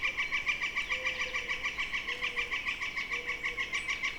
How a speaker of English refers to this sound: Well, there's that flicker again.